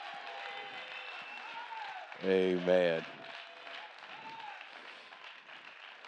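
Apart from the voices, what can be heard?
church audience clapping hands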